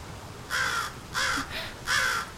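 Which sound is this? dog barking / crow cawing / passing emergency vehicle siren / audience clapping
crow cawing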